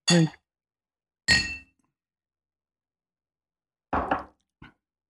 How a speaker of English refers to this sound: All right. All right. Here we go. Clink.